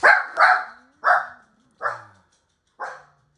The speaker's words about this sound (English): My dog's going off again.